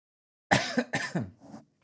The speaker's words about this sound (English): Still got a little bit of a cough. Oh, I went to the doctor for this little month-long cough.